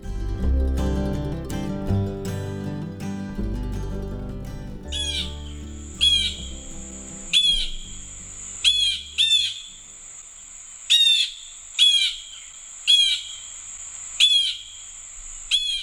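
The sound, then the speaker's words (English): Blue jays calling loudly and harshly at a bird feeder, about nine raspy cries repeated at a steady pace. Music plays at the start, then fades out as the calls begin. “They fly in loud, obnoxious, in typical groups of 2 to 4, frightening all the other birds at the feeder.”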